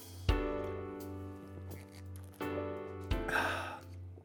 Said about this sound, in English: Some of you have told me that you really like it when I sip coffee on this podcast, which I think is kind of funny. I don't do it because I think it sounds cool. I do it because I like coffee and I need some coffee in the morning.